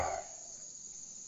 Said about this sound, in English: That was either snakes or locusts. Cicadas, maybe?